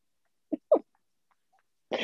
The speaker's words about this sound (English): And he just made straight eye contact with me while I was coughing.